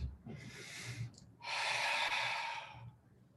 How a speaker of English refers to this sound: Breathing down. Taking a deep breath and slowly breathing out through the mouth.